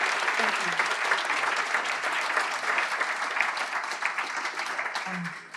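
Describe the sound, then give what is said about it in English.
A crowd applauds steadily for a woman speaker who has just finished, dense clapping filling the whole stretch at a fairly loud, even level without letting up, with a few faint voices briefly surfacing under the noise. “So give her another round of applause.”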